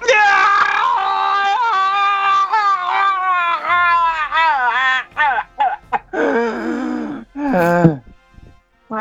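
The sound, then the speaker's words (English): A loud voice lets out long, wavering groans and moans, then breaks into several sharp, ragged gasps for air before trailing off into strained breathing. “I like the deep gasping for air. That was real.”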